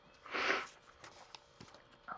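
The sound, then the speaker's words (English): A single wet sniffle, a short breathy hiss lasting about half a second, followed by quiet scattered clicks and rustling with no one talking. “Great sniffle”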